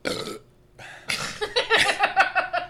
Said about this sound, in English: This beer is making me burp.